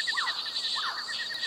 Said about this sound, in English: Oh, listen to that. It's music, isn't it? It's a symphony of critters, of birds and frogs and amphibians and reptiles and caimans and...